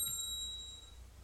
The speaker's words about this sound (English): In my office, I have this little silver bell.